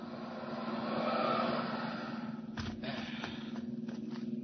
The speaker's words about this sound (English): There's a car coming up the road with two men in it.